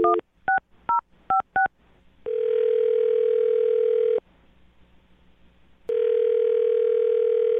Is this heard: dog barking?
no